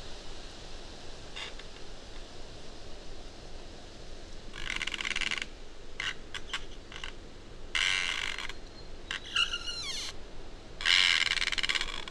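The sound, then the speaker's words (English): Trees in a forest creak and groan in the wind in a series of drawn-out, rasping bursts, some rising into squeaky whines, over a steady hiss of moving air. “Listen to the trees creaking in the wind.”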